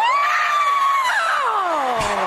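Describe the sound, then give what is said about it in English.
Meryl Streep lets out a long, loud, high-pitched excited scream that slowly falls in pitch, sustained for about two seconds and heard alone, with a brief low thud near the end. “Her scream and then the grunt.”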